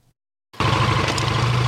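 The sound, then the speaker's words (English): After a brief silence, a motorcycle engine suddenly roars loud as a 46-year-old rider on his new motorcycle at a riding school in New Taipei changes gears while hitting the accelerator, holding a steady, throaty rumble with slight shifts in pitch; no voices. “Changing gears while hitting the accelerator,”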